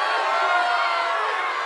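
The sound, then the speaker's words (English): A loud crowd boos NBA player PJ Washington, a Charlotte Hornets forward, in a steady, continuous roar of many voices that fills the whole short stretch without pause. “I know some of you, wait, why are you booing the man?”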